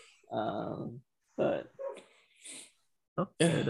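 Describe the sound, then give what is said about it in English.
A huge neighbor's dog barks in a string of deep, gruff bursts, some short and some drawn out, with brief pauses between them and no other sounds around. “My neighbor's dog is like a huge dog just having a manly bark over there.”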